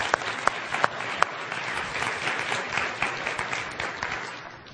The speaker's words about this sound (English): And I wanted to have a round of applause for our elders and what they mean to us and the decisions that they make for us.